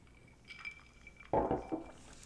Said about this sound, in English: Well, what I do think is we didn't cheers before we started. That is true. We did not cheers. So let's cheers before we start this discussion.